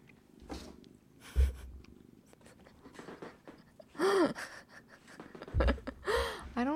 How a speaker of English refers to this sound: So there's a cat in our lap right now, a Yogi. He's obnoxious. He will not be denied love, and he's on my lap, and he's giving me biscuits